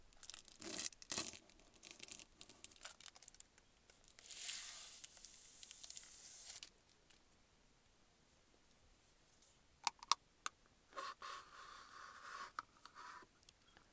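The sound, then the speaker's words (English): Plastic handling of a boba drink cup for ASMR: crinkling and tearing rustles, a longer scratchy stretch, then a few sharp clicks and a final rough scrape, with no talking. “So I'm gonna do a little bit of ASMR.”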